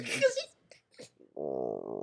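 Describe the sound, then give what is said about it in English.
After a few short vocal bursts, a person makes a sustained, buzzy, rumbling growl, imitating a hungry stomach with their voice; it's fairly loud, lasting under a second. “So what happened was someone's stomach was growling”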